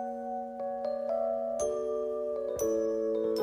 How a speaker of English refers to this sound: I do like those... chimes? Or the little keyboard... Yeah. Whatever. That's a real electric piano right there.